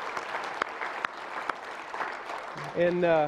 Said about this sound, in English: Today is Veterans Day, and we as a church are so thankful for those who have put our freedom ahead of their safety and have served in the military. Would you just give them a round of applause to say thanks?